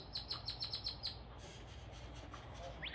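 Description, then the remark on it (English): Birds chirp in a backyard: one in a quick series of six bright, repeated notes, then softer calls follow over a steady low outdoor rumble, not loud. “I'm out in my backyard, can you hear the birds? They're all talking to you.”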